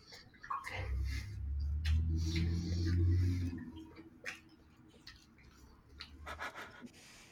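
Close, wet chewing of food with soft smacking and clicking mouth sounds, over a low rumble that fades after a few seconds, then quieter chewing continues.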